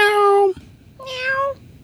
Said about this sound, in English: Meow. Did you do it again just so I could see your face? Uh-huh. Because it's a good face.